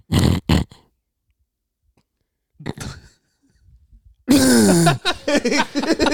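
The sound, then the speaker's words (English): A person reenacts their own snoring with a couple of rough, rhythmic snorts, falls silent for a moment with only faint breath as if they had stopped breathing, then lets out a loud, sudden gasp. “And then I would do like a big gasp too.”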